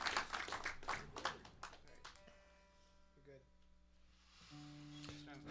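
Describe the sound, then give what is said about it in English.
A short burst of audience applause, dense overlapping claps for about two seconds, fading as sustained musical tones take over, played on WFPK 91.9 Louisville radio. “Totally deserves a round of applause.”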